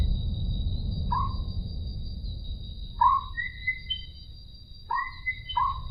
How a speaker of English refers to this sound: So you've got an awareness of a background noise, but the tree frogs absolutely dominate.